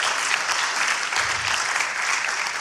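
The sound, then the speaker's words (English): A crowd claps together in a dense, steady wash of applause that fills the whole stretch, loud, with no pauses and no voice standing out. “Clap your hands, that's all right.”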